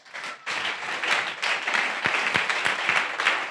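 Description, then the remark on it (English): An audience bursts into applause for the Apostle Paul: dense, steady clapping from many hands for several seconds, with a few sharper individual claps standing out and no voices over it. “I think we should clap for Apostle Paul.”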